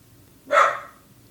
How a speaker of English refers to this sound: Thanks, Elvis. Perfect timing. Maybe you hear a dog barking.